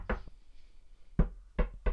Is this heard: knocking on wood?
yes